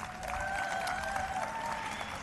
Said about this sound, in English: Please, another round of applause